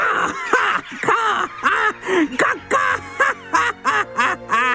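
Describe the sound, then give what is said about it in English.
Crows caw over and over in harsh, raspy bursts, about ten loud calls in a quick, steady rhythm, with no talking. “The crows had a good time mocking Ozzy.”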